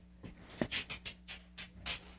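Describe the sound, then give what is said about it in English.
A dog, Mr. Leroy, pants in quick, steady, breathy bursts, roughly four per second, fairly soft, while getting his butt scratched, over a faint low electrical hum with no talking. “I love this dog.”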